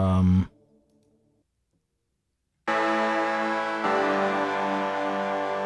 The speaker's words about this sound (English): Harpsichord-ish.